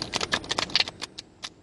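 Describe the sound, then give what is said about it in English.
Playing cards being shuffled, a quick run of crisp papery clicks and flutters that slows into a few separate snaps toward the end, with no voices. “I'm going to shuffle this two more times.”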